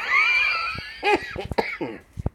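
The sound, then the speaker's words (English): A wheezy, whistling intake of breath gives way to a fit of coughing: several harsh, irregular bursts followed by a couple of sharper coughs at the end. “Do you know, sometimes I wish I started smoking again, then I could justify the cough.”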